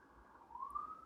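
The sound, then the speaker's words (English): A police siren wails, a single steady tone sliding gently upward, faint and alone against a low background hum with no one speaking. “Hear those sirens?”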